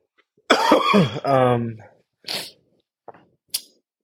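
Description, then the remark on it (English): A loud, raspy coughing fit, one long hacking cough followed by three shorter, quieter coughs spaced out over the next couple of seconds. “Part of it was because of my cough, and part of it was just because the amount of time we had.”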